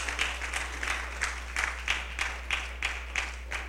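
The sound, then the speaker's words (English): A standing audience claps together as a clap offering to the Lord during a Sunday morning celebration service, in a steady, even rhythm, roughly three claps per second, the unison beats crisp and moderately loud over a low constant hum, with no voices. “I'm going to ask you to stand this morning as we prepare, as we give the Lord another clap offering.”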